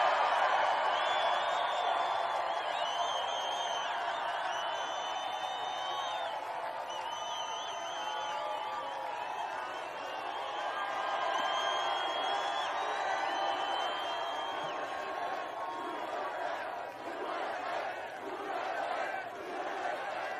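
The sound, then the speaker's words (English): A large rally crowd roars with sustained cheering, whoops and shouts, a dense wall of voices holding steady loudness for about twenty seconds, with scattered clapping near the end, reacting to the speaker's line about the right to keep and bear arms. “Every single time he says keep and bear arms, the crowds all go nuts.”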